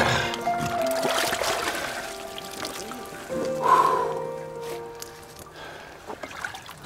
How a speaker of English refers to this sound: gets out of the water.